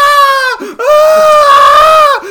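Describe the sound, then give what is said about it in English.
A voice imitates a small child screaming and crying in fright: a brief high wail, then a long, loud, sustained shriek that wavers in pitch, piercing. “She walks in and I'm screaming my guts out. I'm like this.”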